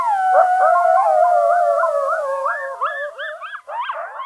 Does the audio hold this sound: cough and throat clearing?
no